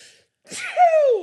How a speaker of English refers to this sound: Gesundheit. Damn.